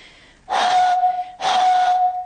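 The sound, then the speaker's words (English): Two breathy, hollow tones made by blowing across the top of an almost full milk bottle, each a steady airy note about half a second long with a short pause between, fairly loud. “So to make this vibrate, instead of putting my finger around the bottle top, what I'm going to do, what most people would do when they play this, is blow across the top. So I'll just see if I can get a note.”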